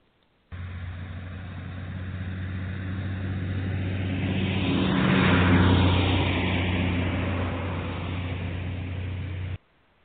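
A car drives along with a steady, low engine drone that swells louder near the middle, as if passing by, then settles back to a constant hum. No one speaks.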